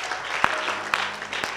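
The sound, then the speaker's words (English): An audience claps steadily, a dense wash of many hands with a few sharper individual claps standing out at regular intervals, fairly loud and with no talking over it. “If you're clapping, go ahead and clap.”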